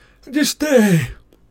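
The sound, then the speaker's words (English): A voice imitates two quick, breathy panting gasps, the first short and airy and the second longer and falling in pitch, fairly loud before trailing into quiet. “Just catching my breath.”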